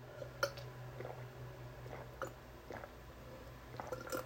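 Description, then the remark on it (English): Someone quietly drinking water: a few soft, wet gulping and swallowing clicks spaced irregularly over a few seconds, with a low steady hum underneath and no talking. “Sorry, I drank some water, guy.”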